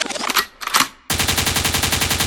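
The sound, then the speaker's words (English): Two sharp, noisy bursts, then a sudden loud rapid-fire gunshot sound effect, used as a cue meaning forward, that rattles on steadily like automatic gunfire, dense, with no talking. “Liquid means rewind, a gunshot means forward.”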